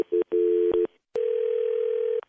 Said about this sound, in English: Okay, it's ringing.